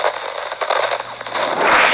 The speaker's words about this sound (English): Wait, something's happening to the rift. I don't think it's reacting well to the fireworks.